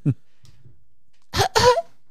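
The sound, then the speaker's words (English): A voice imitates a cough: one short, harsh burst followed by a brief pause and then a second, louder, raspier hack, with a faint low sound before it. “Just hearing him cough all fucking movie.”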